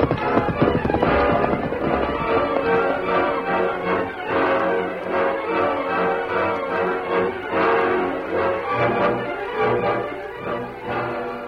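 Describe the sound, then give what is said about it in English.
Horse hooves clatter in a fast, steady clip-clop as the animal runs, loud throughout, with a brief whinny mixed into the dense galloping rhythm. “Come on, turn your horse around.”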